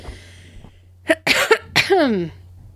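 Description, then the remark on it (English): A few loud coughs in quick succession, harsh bursts ending in a raspy, wheezy drag, with a low hum in the background and no talking. “My cough's plenty loud.”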